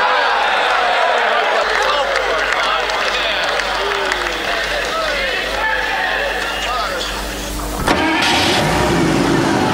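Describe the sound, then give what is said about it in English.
A new car's engine cranks and turns over, settling into a steady running hum, with a sudden shift in the noise near the end and indistinct voices mixed into the busy background. “Gentlemen, I'm going home in my new car.”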